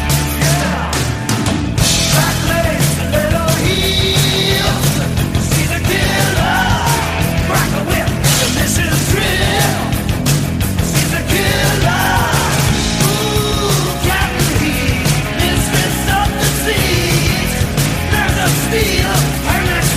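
A loud, driving hard rock song with distorted guitars, pounding drums and a raw, shouted male vocal, playing continuously at full volume with no talking over it.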